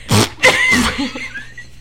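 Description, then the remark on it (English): A loud fart from a person who has been gassy, with a couple of sputtering, rasping bursts lasting nearly two seconds, trailing off into a thinner squeak at the end. “I've been really gassy recently. Hey, guys, listen to this.”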